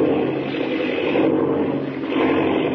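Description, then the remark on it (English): A propeller airplane engine roars loudly and continuously, with a slight dip and swell in the drone as the plane spins out of control. No voices are heard. “Jiminy, the plane. Spinning. It's out of control.”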